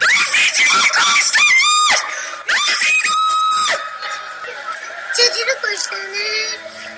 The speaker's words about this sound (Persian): او حالا از قاب دوربینش می بیند که جوانی زیر دست و پای جمعیت جا مانده و با صدای بلند فریاد می کشد. همزمان زن نیز پشت دوربینش فریاد می کشد.